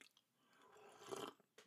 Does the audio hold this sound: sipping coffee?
yes